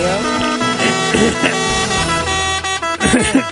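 A loud, sustained truck air horn blares steadily for several seconds, its brassy tone holding with slight wavers, announcing that the truck is here during the WTF News segment, while indistinct voices briefly break through near the end.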